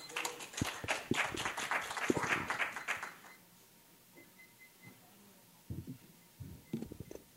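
An audience applauds the third presenter in a dense, crackling burst of many claps for about three seconds, then stops abruptly, leaving quiet broken by a few dull low thumps.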